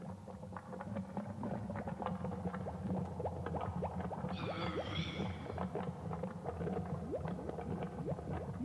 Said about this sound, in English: The bubbles again. All right, let's give it a forward because it sounds like it's just going to be repetitive.